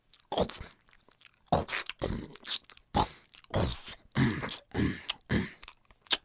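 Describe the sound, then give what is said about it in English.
A huge goat munches vegetables in a garden with a run of loud, wet crunching bites coming in irregular bursts, about one or two each second, with short pauses between mouthfuls and no voices. “Stop eating our vegetables!”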